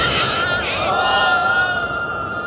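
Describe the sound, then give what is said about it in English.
A person imitates the squealing oink of pig-like guards being pushed off a cliff, one long, high-pitched, wavering squeal held for a couple of seconds, loud with no other talk. “As they oinked off the cliff”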